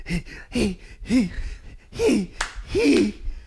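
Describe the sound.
A voice imitates heavy breathing heard over the phone when a call is picked up: five loud, rhythmic, breathy gasps and groans, each about half a second apart, delivered alone.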